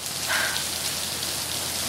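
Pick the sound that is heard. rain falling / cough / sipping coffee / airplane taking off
rain falling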